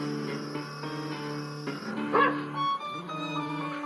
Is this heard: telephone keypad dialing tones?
no